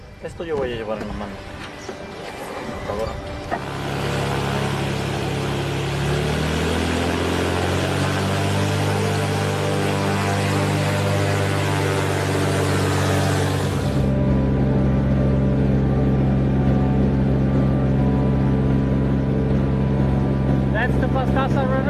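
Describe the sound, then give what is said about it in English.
A single propeller plane's engine drones steadily and loudly as it follows the Pastaza River into Achua territory in the western Amazon basin, at the Ecuador–Peru border; its deep layered hum starts after a few seconds, a broad rushing roar rides over it, then drops away, leaving the throbbing tones. “In a single propeller plane, we follow the course of the Pastaza River, deep into the territory of the Achua people.”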